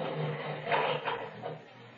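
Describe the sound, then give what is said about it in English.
Lift gates rattle open at the other end of a passage, a faint metallic clatter over a steady mechanical hum, with three soft clanking bursts spread across two seconds. “I heard the sound of the lift gates at the other end of the passage.”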